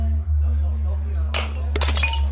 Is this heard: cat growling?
no